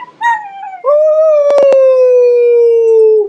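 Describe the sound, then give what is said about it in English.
A dog, barking because the neighbors just took their dog out for a walk, lets out a short rising yelp, then a long sustained howl that slowly drops in pitch, loud, with a quick burst of clicks partway through. “This stupid dog is going to bark now because they just... The neighbors just took their dog out for a walk, so...”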